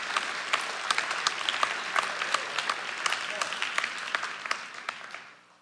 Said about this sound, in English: Come on, church. Give the Lord a clap offering this morning.